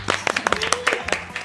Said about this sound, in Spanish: aplausos orgánicos. Sí, muchos aplausos.